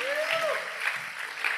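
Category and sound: crowd, audience applauding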